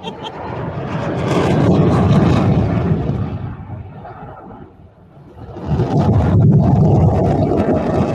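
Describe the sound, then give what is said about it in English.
A loud aircraft roars past overhead, coming by again, the broad engine rumble swelling, briefly dipping, then surging back strong and sustained. “not like I'm gonna fly that. Coming by again.”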